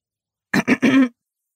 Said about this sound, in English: Huh? When did Ghairani learn to clear her throat? I looked at her. Ahem, ahem. Oh. It was a bent old man clearing his throat, not my cow.